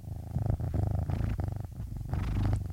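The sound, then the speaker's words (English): A kitten purrs right in a person's face, a loud, rumbling, steady purr with a rhythmic pulsing flutter as it breathes in and out, no voices present. “The kitten is just purring in my face.”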